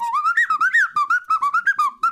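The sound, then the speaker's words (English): A tin whistle, played badly, gives a wobbly, off-pitch ice cream van jingle, a quick run of about a dozen short notes bending up and down, with no talking. “Do you have a tin whistle?”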